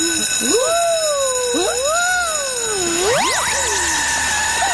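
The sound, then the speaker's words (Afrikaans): A fire station alarm rings out as loud, wavering electronic tones that swoop up and down in pitch, with steady high tones held underneath and a sharp rising glide near the end. No one speaks. “Daardie klok wat nou daar gelei het, is die brandweer alarm.”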